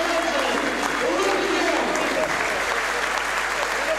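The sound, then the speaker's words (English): A large stadium crowd applauds steadily as players are called out for a lap of honour, led out by Tozer, a dense, continuous wash of clapping with indistinct voices and faint cheers mixed in, holding at an even, loud level throughout. “Maybe I'll go quiet for a moment so you can hear the players all getting called through.”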